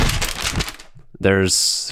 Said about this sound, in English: I hope that, like, the audio actually picks that up as what it is and not just, like, static sounds. It's going to pick it up. Just like it's going to pick up that vape hit there.